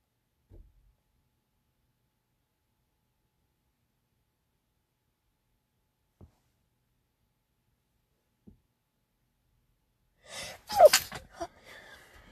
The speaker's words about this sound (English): oh my goodness, I'm gonna sneeze.